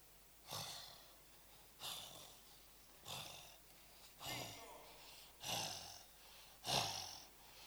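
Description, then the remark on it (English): A voice imitates heavy, labored breathing: six loud, rasping breaths in a steady rhythm, each a harsh wheezy burst roughly a second apart, with no other talk. “when you breathe and you are 2 meters away, we can hear.”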